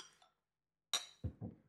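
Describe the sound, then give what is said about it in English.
Two glasses of Red Seal Ale clink together once in a bright, ringing toast, followed by a couple of soft, dull knocks as the glasses are handled. “Here we go, Red Seal Ale. Cheers, salud.”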